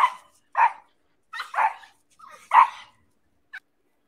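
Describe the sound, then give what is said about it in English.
A dog barks in short, sharp bursts, about four loud barks spaced roughly a second apart, followed by a brief faint yip, with no talking. “Let me see if I can get these dogs up here.”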